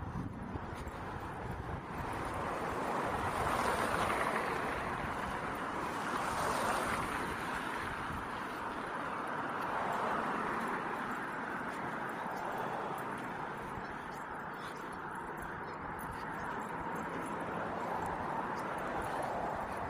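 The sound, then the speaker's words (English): A car wash runs steadily, with a continuous rushing hiss of water spray and brushes and a low churning rumble that swells and eases slightly over time. No one speaks. “For the most part, I used to love the sounds of the car wash.”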